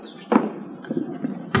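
The front door of a house on Reservoir Street swings shut at 11:15 a.m. with a solid wooden thud, followed by a few softer knocks and a final sharp bump, all heard alone without voices.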